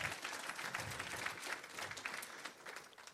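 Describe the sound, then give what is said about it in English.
An audience claps for a pastor who has been to summer camps every year for about 30 years, a dense, steady patter of many hands that holds for about three seconds without anyone talking, fairly soft overall. “So y'all go ahead and give him a hand clap for that.”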